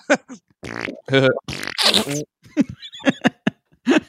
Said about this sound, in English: Maybe I'll walk out to just a bunch of boo sound effects. That'd be funny, too. Or fart noises.